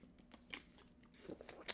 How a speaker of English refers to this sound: So, let's power through. Let me get a sip of water.